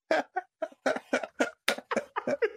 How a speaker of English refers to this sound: Jesus Christ. Can't stop coughing. Is he dying? I don't know.